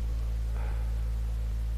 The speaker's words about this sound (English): Why does it sound super deep? Lots of static, better, sound great.